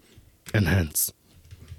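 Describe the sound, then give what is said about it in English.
Soft, irregular clicks of a man typing on a computer keyboard, tapping along quietly in the background, briefly covered by a short burst of a voice ending in a hiss. “I can hear him typing.”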